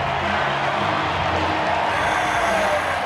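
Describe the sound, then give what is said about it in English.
A ballpark crowd cheers in a loud, steady roar that holds for about three seconds, a dense wash of many voices with no single speaker standing out, after Matt Mervis's first big league base hit, a single into right center field in the eighth inning. “Listen to this crowd.”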